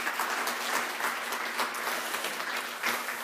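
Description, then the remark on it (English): An audience at an audience gathering claps steadily for a few seconds before a guest speaker begins his talk, a dense, even patter of many hands with bright, crisp hits and no voices over it. “Clapping before I say anything.”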